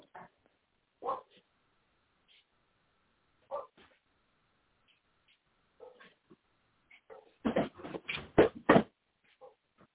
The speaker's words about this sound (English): Okay, my dog don't want to shut up.